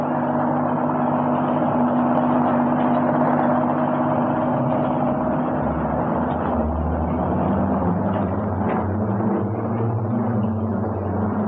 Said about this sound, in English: Somebody's heard the car.